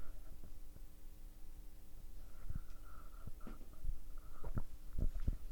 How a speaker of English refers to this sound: I want to take a sip of water. 1 second.